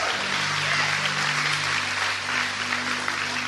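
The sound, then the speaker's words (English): An audience claps their hands for God in sustained, dense applause, a steady wash of many overlapping claps at fairly even loudness, with a faint low tonal hum underneath. “Give God a big hand clap today.”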